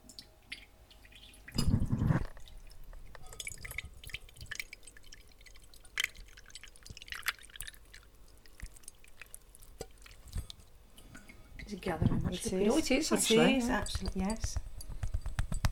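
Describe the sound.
A cooled mixture is poured through a piece of linen gauze held across a bowl: a brief splashy pour early on, then scattered drips, building to a denser wet trickle near the end, with muffled voices partly underneath.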